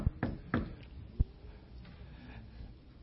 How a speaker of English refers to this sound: Behold, he stands at the door and knock.